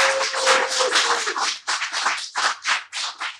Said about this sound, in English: Let's shout out our studio audience. Round of applause. Up in here.